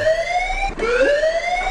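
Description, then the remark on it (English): A loud panic alarm siren sound effect wails with a steadily rising pitch, its tone bright and buzzy with strong overtones, breaking briefly before sweeping upward again, with no voices. “If you are a part of San Antonio Spurs Nation, you need to hit the panic alarm.”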